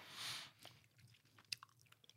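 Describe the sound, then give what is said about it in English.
Wet munching and chewing of a snack, with soft smacking and a few sharper crunchy clicks scattered over a couple of seconds, with no talking. “That wet ass munching sound.”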